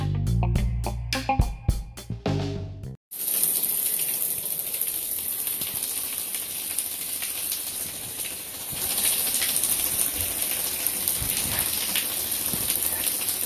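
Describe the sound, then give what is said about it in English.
A short burst of music cuts off, then a shower sprays steadily and loudly, a dense continuous hiss of water that grows slightly fuller partway through, with no voices. “It is Wednesday, January 23rd, and this is Cold Shower Talk.”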